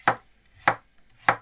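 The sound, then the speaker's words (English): Three crisp knife chops on a cutting board, evenly spaced at a slow, steady pace, as vegetables are cut, with no voices. “I'm the co-host who chops. You said. All the vegetables should be done by now.”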